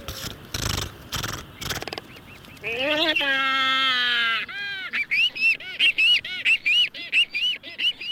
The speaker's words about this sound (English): Albatross. Albatross. Listen to him.